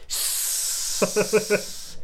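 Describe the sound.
A voice imitates a fizzy beer can being cracked open: a long, steady hiss lasting nearly two seconds, with four quick throaty pulses bubbling up over it toward the end.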